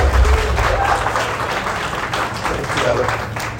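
A church audience applauds steadily to welcome the pastor, a dense wash of many hands clapping at an even, fairly loud level for a few seconds, with a faint low hum underneath.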